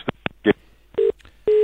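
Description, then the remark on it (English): A few sharp clattering knocks, like a handset being bumped as a phone is knocked out of someone's hands, give way to a steady, loud telephone busy tone that beeps on and off. No voices. “That was Adam Simpson knocking the phone out of Dennis Cometti's hands.”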